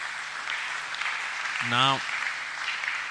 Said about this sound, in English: Clap for Jesus.